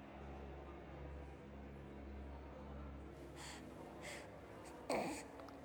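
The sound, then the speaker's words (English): A brief, soft gasp for air near the end from a wounded guardsman crouched in the darkness of an arch in a church, cradling a blanket, preceded by a couple of faint breathy rasps, all set against a steady low rumbling ambience with no talking. “Deeper in the shadows of my hiding place, I hear a soft gasp for air.”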